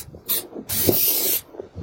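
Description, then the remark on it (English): Spray paint hisses from an aerosol can onto a car in two bursts, a short puff followed by a longer sustained spray, fairly loud with no talking. “Yeah, he didn't really take into account what he was going to spray paint on his dad's car, so he drew an X and then a smiley face.”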